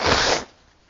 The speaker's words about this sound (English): Excuse me while I blow my nose a second.